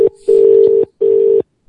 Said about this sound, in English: So two phones ringing.